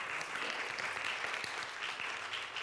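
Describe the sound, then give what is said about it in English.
An audience claps their hands to Jesus Christ in a dense, steady wash of applause that holds at an even, fairly loud level throughout, with no voices standing out above it. “Someone clap your hands to Jesus Christ.”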